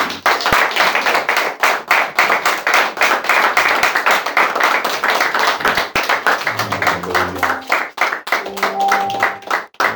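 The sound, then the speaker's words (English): An audience claps their hands for the Lord in loud, dense applause that fills the whole stretch, with a few rising voices and musical tones creeping in toward the end. “Y'all come on and give the Lord a hand clap.”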